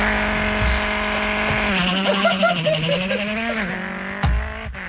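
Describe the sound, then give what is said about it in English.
A voice imitates a rally car engine with the mouth, a sustained buzzing drone that rises and wobbles in pitch like revving through gears, loud, for about five seconds. “We've done it before, but I can do the rally car noise with my mouth.”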